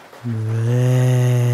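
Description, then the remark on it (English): A single long, low moo from a cow, loud, starting abruptly and holding a steady droning pitch to the end with no talking over it. “Did that cow say moo or brains?”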